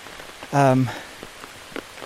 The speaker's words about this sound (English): Oh, wow. I'm lowering the umbrella a little bit, so the radius of the umbrella becomes slightly bigger because there's a lot of rain falling now.